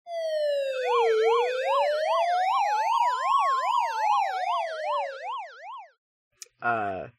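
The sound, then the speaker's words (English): Emergency vehicle sirens blare loudly downtown for about six seconds, one rapid warbling yelp layered over a slower rising and falling wail, before cutting off, followed by a brief click and a short burst of voice. “So before we sign up, let's paint a picture of where these three investigators, these characters are at right now as the sirens blare in downtown.”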